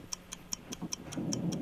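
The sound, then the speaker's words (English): A steady 60-second game clock ticking at an even pace during a movie guessing game, about five ticks per second, crisp, with a low rumble swelling underneath toward the end. “60 seconds on the clock in the no-name movie game. Your time begins now.”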